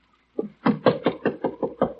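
A rapid series of about eight firm knocks on a door, evenly spaced and fairly loud, with no voices in between.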